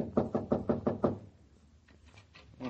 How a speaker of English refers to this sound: The door's closed. Well, knock. What are you waiting for?